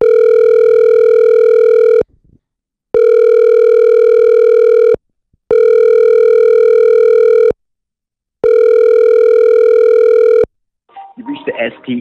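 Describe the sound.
A telephone call rings out before going to voicemail: four long, steady, buzzing ringback tones of about two seconds each, separated by short silences, before a voice begins to speak at the very end.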